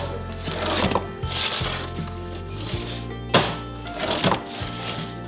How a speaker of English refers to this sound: All right, let's cut it. Should hear a beautiful crunch if this is cooked correctly.